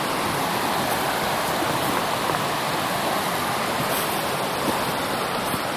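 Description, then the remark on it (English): A steady, continuous rush of stream water flowing along a trail with small bridges crossing the water fills the whole stretch, fairly loud, with no pauses, breaks or voices. “They built lots of little bridges to go back and forth across the water.”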